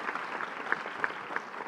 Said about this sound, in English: Can Can we clap for that? I want a round of applause for that. That's beautiful.